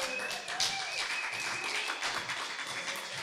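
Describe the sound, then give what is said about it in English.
A crowd applauds steadily for a few seconds for a newly married couple called to the front, a dense wash of many hands clapping at once, fairly loud and sustained with no clear individual beats. “Give him a clap, come on.”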